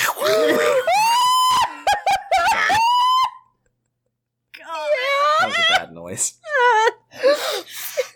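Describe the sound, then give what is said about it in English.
A voice gives a meme ringtone clipped from the Grapefruit Your Man video: shrill, wavering squawks and screechy cries, loud and frantic, in two bursts split by a brief silence. “One time, speaking of on brand for this episode, I clipped the sound from the Grapefruit Your Man video and made it into a ringtone.”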